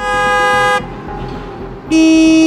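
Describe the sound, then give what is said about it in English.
Two loud, sustained car horn blasts sound over a steady rumble of heavy road traffic at the intersection of Wilson Heights Boulevard and Shepherd Avenue in Northwest Toronto on a crisp, sunny fall day, the first nearly a second long, then a pause of engine noise before the second honk. “Traffic is heavy at the intersection of Wilson Heights Boulevard and Shepherd Avenue on this crisp but sunny fall day.”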